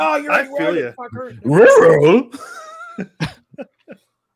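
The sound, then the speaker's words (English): A voice does a Scooby-Doo impression of a cartoon dog talking: gruff, warbling, rising-and-falling syllables, a louder drawn-out yowl in the middle, then a few short clipped yelps trailing off. “All I gotta do is say rural as a dog.”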